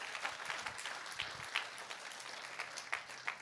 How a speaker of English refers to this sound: If you believe that, I wish you'd clap your hands and say, I'm gonna live on purpose.